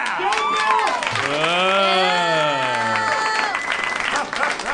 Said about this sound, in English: Temper your applause.